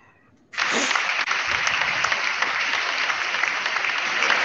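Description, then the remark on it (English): An applause sound effect starts abruptly after a brief quiet moment, then holds as steady, dense clapping at a loud, even level with no voices over it. “Here, turn the applause up.”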